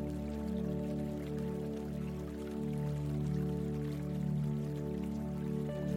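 A steady, continuous trickle of running water from a water fountain, flowing evenly for the whole stretch with a soft droning hum underneath and no voices.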